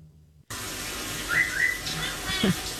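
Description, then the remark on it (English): A pet bird lets out a few short, high chirps and whistles, fairly quiet, over a steady hiss like running water. “Birds are so weird. Birds are strange.”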